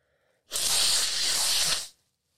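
A single rough, scratchy rub of a paper towel against a nose, fairly loud, lasting just over a second with a steady hissing texture, then stopping abruptly.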